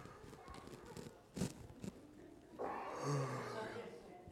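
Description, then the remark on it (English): A single long, drawn-out yawn from a person rises into a breathy, voiced groan partway through, following a few soft bumps and breaths. “We don't really think much about yawning”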